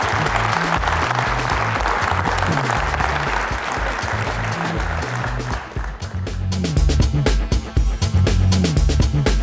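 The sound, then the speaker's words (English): An audience at the Integrated Masterclass event in Canberra breaks into loud, sustained applause for Tom Trbojevic over a steady musical backing. The clapping thins out after about six seconds, leaving the rhythmic music playing on its own. “Can you join me in a big round of applause for Tom Trbojevic?”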